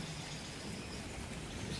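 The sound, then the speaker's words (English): Steady rain falls in a continuous, even hiss with soft scattered patter, holding a constant moderate level throughout with no voices. “The rain was washing away my troubles and insecurities, leaving behind only peace and contentment.”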